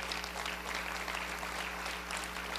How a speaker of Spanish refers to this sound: ¿Puede usted regalarle un aplauso a Dios si usted quiere?